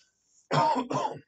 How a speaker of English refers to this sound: Sorry about the coughing, by the way. Trying not to cough so much, but I don't know.